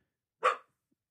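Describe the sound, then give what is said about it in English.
A single sharp bark from a male dog walking out of a room, with no noise prompting it, brief and loud against an otherwise silent background. “He just walked out of the room but had to bark while doing it.”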